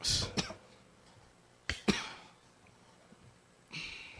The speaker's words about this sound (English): I love the way that you're coughing like that, man. Yeah, it's quite chunky. It's like a... It's like a mixture of things.